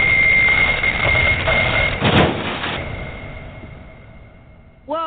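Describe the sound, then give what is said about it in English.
The Wonder Wheel, a huge Ferris wheel, comes to a screeching halt: a steady, high metallic squeal rides over a heavy mechanical rumble, with a loud clanking burst midway before the noise slowly winds down. “The Wonder Wheel has come to a screeching halt, throwing Max and our team in every direction.”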